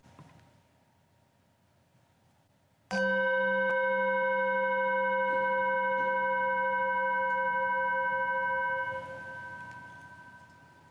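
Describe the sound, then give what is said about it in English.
A chime is struck once and rings out with a clear, steady tone full of bright overtones, sustaining for several seconds before fading away. No one speaks. “As we listen to the chime, let's remember our connection to each other and the world around us.”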